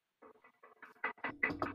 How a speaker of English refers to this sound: Knock on wood right now. Just knock on wood, please.